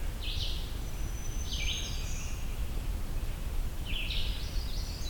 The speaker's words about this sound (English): Oh, yeah, magnolia warbler, I think.